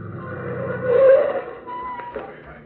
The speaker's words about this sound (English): But you try not to think of that now as you guide your car again up the narrow dirt road to the doctor's cabin.